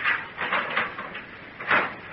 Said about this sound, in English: Wait till I unlock this door.